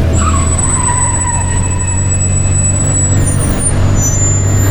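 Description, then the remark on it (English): A heavy truck roars with deep engine rumble as it comes in off a country road toward a back gate, while tires skid with a long, high screech that shifts pitch partway through, loud and continuous with no voices. “Here it comes! They're gonna plow right through the eaters.”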